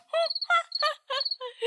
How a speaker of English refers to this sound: Just crickets. When it comes to jokes, it's just silence.